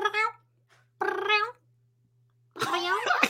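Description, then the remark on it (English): A person imitates a cat meowing, three drawn-out vocal mews with wavering pitch separated by short pauses, fairly loud, the last one more strained and raspy. “I hear you just making these cat sounds.”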